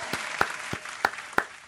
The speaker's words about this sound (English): I should really just join. Like, play the clapping. What if I join the clapping?